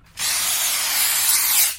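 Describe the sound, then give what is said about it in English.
A steady spray hiss, fairly loud, sprayed into a person's face, starts abruptly and keeps up for about a second and a half before cutting off, with no voices. “Why you spray my face?”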